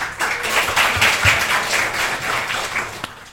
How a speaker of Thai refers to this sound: โอ้โหอยากจะร่วมปรบมือแสดงความยินดีให้กับหัวหน้าแล้วก็ทีมงานทุกๆคนบรรดามวลชนทั้งหลายนะฮะรวมทั้งเผ่าพันธุ์ของน้องวัวแดงด้วยนะครับที่ได้มีความหวังมีอนาคตต่อไปนะ